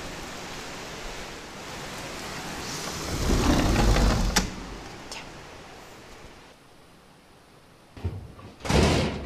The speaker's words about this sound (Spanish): ¡Ay! Está lloviendo.